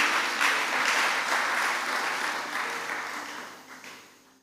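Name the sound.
audience clapping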